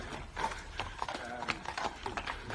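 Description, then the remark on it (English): Horses clip-clop along at a steady walking pace, hooves striking repeatedly on a hard surface, with faint background noise and a brief murmur of voices. “Oh, wow, there's some horses here.”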